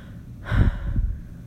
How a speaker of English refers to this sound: I take a heavy breath.